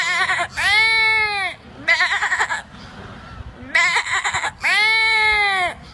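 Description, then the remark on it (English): A man's voice imitates a goat bleating, two long wavering bleats separated by shorter stuttering calls, loud, with no other talk. “Man or goat? It's a man.”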